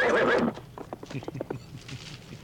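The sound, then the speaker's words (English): A horse lets out a loud, bright whinny, followed by a quick run of clip-clopping hoofbeats on a hard surface, with faint voices in the background. “And their horses were right there, luckily.”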